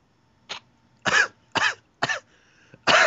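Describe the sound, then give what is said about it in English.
A harsh coughing fit: five sharp, forceful coughs in quick succession with short gaps between, loud and hacking as if trying to clear the throat, from a man who swallowed a bug or something that got caught in his throat. “I seriously had like something get caught up in my throat.”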